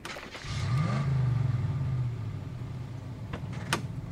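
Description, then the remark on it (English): A truck engine revs up and settles into a steady, loud low rumble as the truck is driven over to a shipping door, with a couple of sharp clanks near the end. “drive the truck over.”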